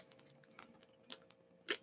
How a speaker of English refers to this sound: Sorry, drinking water. Got to stay hydrated